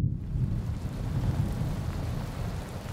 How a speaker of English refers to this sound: As you consider this, you hear a low rumble as the skies of Wonderland quickly turn overcast and a thunderstorm begins to roll in.